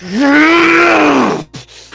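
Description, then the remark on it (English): A person voices an inhuman roar for a character, a long, strained roar lasting over a second, a harmonic-rich groan that rises slightly in pitch and then cuts off abruptly, followed by a short breathy sound. “But you see his teeth grit. And an inhuman roar just...”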